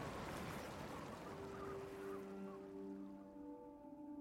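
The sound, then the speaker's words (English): Running river water gurgles and rushes steadily at a distance, fairly quiet, with a faint humming tone emerging partway through. No one speaks. “The distant but unmistakable gurgle of running water.”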